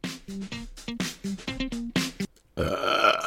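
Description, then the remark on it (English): A long, loud, croaking burp broken into rapid pitched pulses over a couple of seconds, followed by a burst of noisy clapping. “Pardon me. Sorry, I just had to get that out of my system.”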